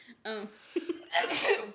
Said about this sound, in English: I might sneeze in a sec.